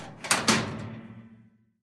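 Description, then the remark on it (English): A cottage door shuts with a solid thud and a second knock, then a small click as the door is locked, leaving a brief low ring that fades quickly. “She ran as fast as she could and didn't stop to catch her breath until she was safe inside her cottage with the door locked.”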